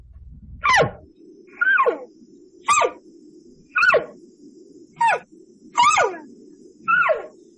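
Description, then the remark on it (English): Seven short, squeaky cow-calf chirps, each a quick downward-sliding note, repeat at roughly one-second intervals over a low, steady background hum, with no voices. “Then we have our cow calf sounds, our chirps, and chirps are, most people think it's a bird out there.”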